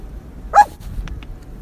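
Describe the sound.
A person imitates the woof of Waffle, a dog, with a single short, high-pitched, shrill woof. It is followed by a couple of faint clicks in otherwise quiet surroundings.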